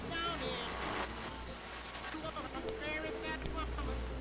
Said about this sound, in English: It's raining. Thank God. I don't know if you can hear it on the Dreamcaster, but it's raining, and I am so thirsty.